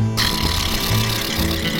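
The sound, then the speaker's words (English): A plastic bag taped over a broken car window flaps furiously while driving on a freeway in freezing cold Indiana weather, a loud, continuous rapid rattling buzz like a power tool, with a steady low droning hum beneath it and no talking. “This is how that plastic makes.”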